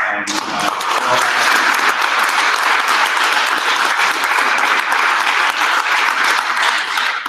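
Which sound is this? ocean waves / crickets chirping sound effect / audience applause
audience applause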